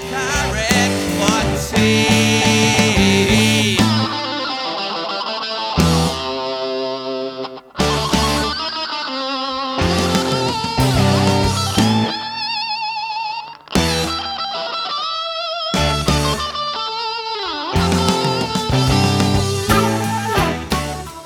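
A distorted electric rock guitar plays a soaring solo drenched in echo over a loud, full band, with a few brief breaks where the backing drops out before crashing back in; the guitar is mixed off-center to one side, with the echoes heavier in the other channel.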